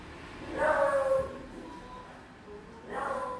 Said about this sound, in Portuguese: É a Zelda latindo, é. Nem a Zelda gosta desse filme.